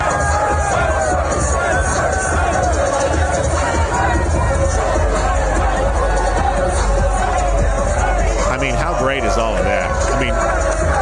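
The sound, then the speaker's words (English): A huge SEC basketball crowd roars and cheers in celebration as fans storm the court at the end of the game, recorded on a cell phone, a dense, continuous wall of shouting voices and babble with occasional sharper whoops rising above the din. “This was his cell phone footage of the celebration at the end of the night last night.”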